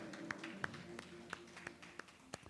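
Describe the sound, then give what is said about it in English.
A church audience claps in praise to God after a prayer, with sharp hand claps landing at irregular intervals over a soft wash of scattered applause. The clapping stays fairly quiet throughout, and no one speaks. “Let us give God a hand clap of praise.”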